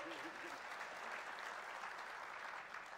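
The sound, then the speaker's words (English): Steady audience applause as a guest is called over, filling the whole stretch, a dense wash of many hands clapping at an even, sustained loudness, with a brief tonal murmur of voice at the very start. “if you want to give him some clap and transition music.”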